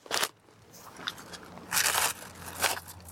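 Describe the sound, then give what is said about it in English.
Someone crunches crisps in three sharp, crackly bites with pauses between them, the middle crunch lasting longest, over a faint low hum and no talking. “Oh, so I'm in now 2 bags of crisps.”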